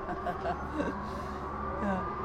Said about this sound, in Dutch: Nou, ze doen het hoor, de sirenes. Ja. Ja, ze werken.